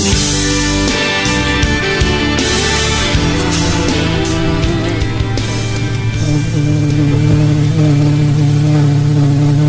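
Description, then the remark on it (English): A swarm of hornets drones in a loud, continuous buzz thick with layered harmonic tones, holding steady throughout and swelling slightly toward the end as the hornets get closer, with no voices. “Is that the bees? The Hornets? Good Lord. They're getting closer, Todd.”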